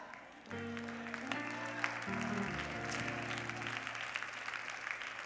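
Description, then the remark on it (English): An audience claps steadily and loudly for several seconds, a dense crackling wash of hands, while sustained keyboard chords hold and shift underneath. “And while we all clap over that, please understand, if God is going to get glory out of your come up, that means people have to see you at the gate.”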